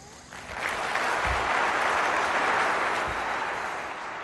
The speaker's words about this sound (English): Y'all can start clapping right here.